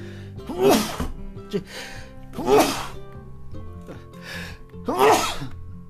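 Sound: human sneeze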